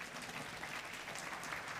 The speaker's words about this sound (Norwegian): Gi henne en god klapp.